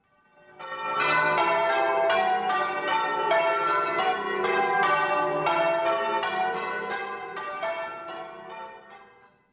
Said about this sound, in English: Maybe today you just need to focus on God and forget about the squirrels and move on to the Messiah and hear the bells as they call out to you.